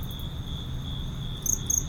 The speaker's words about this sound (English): Hey guys, just want to let you know that our microphones picked up some crickets.